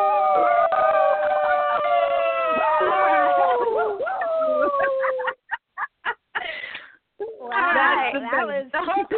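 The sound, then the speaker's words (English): Several voices imitate werewolf howls together, long wavering drawn-out tones overlapping for about five seconds, followed by choppy bursts of laughter and excited chatter. “I can give you a howl if you want one.”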